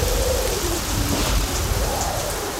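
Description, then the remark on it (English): A thunderstorm with rain and hail pounding down on a roof in a dense, continuous roar, a low rumble of thunder beneath it, loud throughout with no voices. “The same roof that's getting bludgeoned by hail. When the storm subsides, you might want to call us.”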